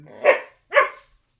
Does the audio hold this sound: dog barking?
yes